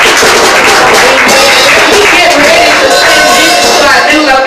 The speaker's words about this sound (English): Let's clap our hands for the Lord today.